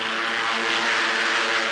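Fighter planes of the new American Air Force over China, carrying on the Flying Tigers tradition, roar aloft with General Chenault at the controls: a steady, dense drone, a broad rushing noise with harmonic buzz running through it. Loud and unbroken throughout, with no voices.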